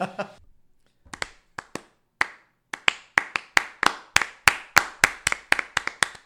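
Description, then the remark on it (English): Hand claps begin slowly and sparsely, then steadily quicken into a faster, even rhythm of sharp, crisp smacks, a classic slow clap for Alabama building up after a brief murmur of voice at the start. “This is like a slow clap for Alabama.”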